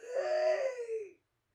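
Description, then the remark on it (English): A woman lets out one drawn-out, voiced gasp lasting about a second, loud, with a slight falling pitch before it cuts off into silence. “She's gasping and I don't know what she's doing.”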